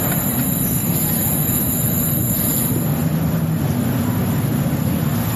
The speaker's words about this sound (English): We gotta use this car interior at some point.